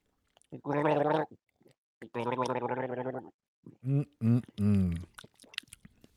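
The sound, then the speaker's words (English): Someone gargles a sip of beer with dark chocolate and coffee notes: two long, bubbling throaty bursts, followed by a few shorter, choppier gurgles. No speech is heard. “And the gargle, that definitely brought out a little bit more”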